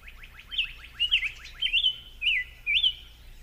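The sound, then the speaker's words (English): A summer tanager sings a run of quick, rolling warbled phrases and clear whistles, about five bright slurred notes strung closely together over a soft low hum, with no talking. “So let's listen to the song of the summer tanager.”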